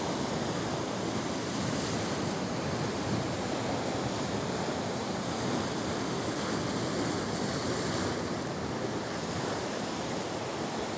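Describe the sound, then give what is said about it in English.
Steady ocean surf washes continuously on a sunny day, a dense wash of rushing water with slight swells in intensity, moderately loud, with a faint hint of wind and no voices. “Even just the sound of the waves, the water moving around, can put you in a trance.”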